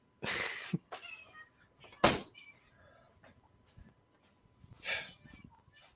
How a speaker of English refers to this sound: So, my cats are about to go off, too. They want their dinner. So, they sing in a chorus.